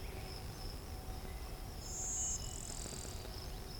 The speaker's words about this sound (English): It picked up blue-wing warbler.